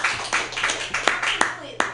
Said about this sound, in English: Everybody can clap for that.